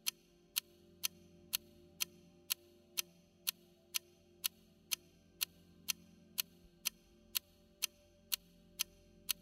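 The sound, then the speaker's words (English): A clock ticks steadily, about two sharp, crisp ticks per second, clear over a soft low hum, with no voices. “Focus your attention on the tick of the clock.”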